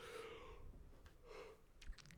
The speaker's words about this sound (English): We're yawning so much. Oh my god, every time I yawn, you yawn. And then every time you yawn, I yawn.